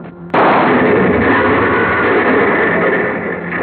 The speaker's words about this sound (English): The car went up in a blast of powder and gasoline